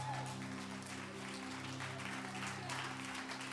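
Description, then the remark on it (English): A church audience claps steadily and continuously in praise to the Lord during worship, a dense wash of many hands applauding at once over a low sustained hum, with no words spoken. “Give the Lord a good hand clap of praise and let's worship him.”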